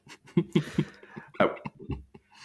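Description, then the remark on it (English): Someone clears their throat with a series of short, rough, gravelly bursts, then a few softer grunting rasps, with no speech. “I'll clear my throat before I say this, but I was going to say the same thing as well.”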